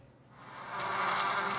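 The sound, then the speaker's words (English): A dense, continuous buzzing of many bees swarming, a steady droning hum that swells louder over its short length, heard alone with no voices. “A swarm of bees is number 10”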